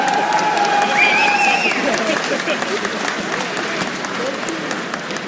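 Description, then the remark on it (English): An audience applauds steadily for the samurai of the Lion Clan of Rokugan as they are introduced, with scattered cheers and a few high whistles early on, the dense clapping staying loud throughout before easing slightly toward the end. “Let's hear it for the samurai of the Lion Clan.”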